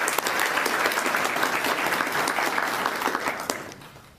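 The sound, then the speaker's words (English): An audience applauds a group of musicians in a steady, dense wash of clapping that holds strong for several seconds, then thins and fades out toward the end. “One more round of applause for this group.”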